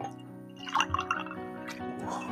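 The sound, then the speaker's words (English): Fever-Tree cucumber tonic water is poured into a glass, a short burst of splashing and gurgling liquid, with a steady low hum underneath and no one speaking. “And the very nice people at Fever Tree have put some of that in their tonic water, which I shall pour into this glass.”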